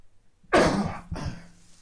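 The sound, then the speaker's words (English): A sharp cough bursts out, then a second rougher burst as the person clears their throat, with no talking around it. “Every time I start a podcast, I want to cough.”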